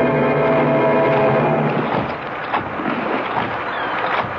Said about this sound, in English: The boat is sinking, Mrs. Forbush. It's going straight to the bottom.